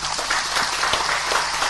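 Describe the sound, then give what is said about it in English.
Hundreds of football fans in Cameroon applaud steadily as football legend Samuel Eto'o Fils announces that all local games will be broadcast live on local radio and TV, dense overlapping claps forming a loud, continuous wash of sound with no voices standing out. “Hundreds of fans applaud as Cameroon's football legend Samuel Eto'o Fils announces that all local games, including league matches, will henceforth be broadcast live on local radio and TV stations.”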